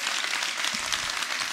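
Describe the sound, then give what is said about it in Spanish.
An audience breaks into steady, dense applause for God, many hands clapping at once in a continuous wash of sound that holds an even loudness throughout, with no voices standing out. “¿Por qué no le dan un fuerte aplauso a nuestro Dios?”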